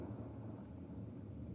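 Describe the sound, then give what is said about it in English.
A low, continuous rumble of rolling thunder sound effect, steady and fairly quiet, with no sharp crack. No voices are heard. “A nice... rolling lightning. To let you know, there's a storm coming.”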